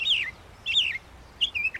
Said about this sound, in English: It was a northern mockingbird.